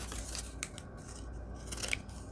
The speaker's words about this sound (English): You're kind of fun today. I'm enjoying you, you little scallop scissors, you.